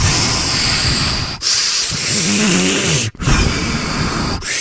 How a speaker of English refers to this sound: One, try five-finger breathing. Trace the outside of your hand with your pointer finger. When you trace up, breathe in. When you trace down, breathe out.